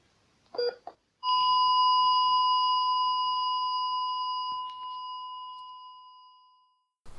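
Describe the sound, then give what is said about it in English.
A brief pair of electronic heart-monitor beeps gives way to a continuous, steady flatline tone that drones loudly for several seconds, then cuts off into silence. “In the deafening silence, the monitor beeped its last beep.”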